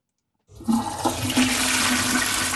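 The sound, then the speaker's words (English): A toilet flushes, starting abruptly after a brief silence and roaring steadily with rushing, gurgling water until the end, with no voices present. “We're going to play Flush It Friday, Professor.”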